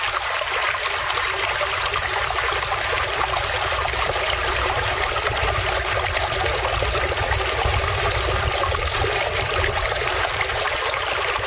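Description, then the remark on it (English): A babbling brook flows steadily, a continuous bright rush and trickle of water over stones with no pauses, evenly loud throughout, with no voices, played as Babbling Brook Radio on Flip 107.1. “The sounds of water. It's Babbling Brook Radio on Flip 107.1.”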